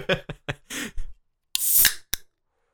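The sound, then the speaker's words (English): A can of collab beer is cracked open: a few scuffs and clicks of handling, then a loud, bright carbonation hiss lasting about half a second, ending with a short sharp snap. “Ooh, that release of carbonation in the station. Wow. Just from opening the can, I got a really potent whiff of the hops.”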